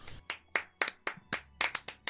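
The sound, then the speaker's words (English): Steady hand clapping played from a soundboard, about nine sharp claps at an even, brisk pace, moderately loud with no voices over it. “I'd like to thank give a round of applause for Josh in the Pirate's Day event that he was able to make.”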